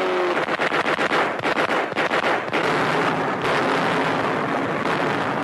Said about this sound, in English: While our planes are out, Japanese torpedo bombers swarm in to attack U.S. naval forces. Anti-aircraft fire from our guns meets the attack.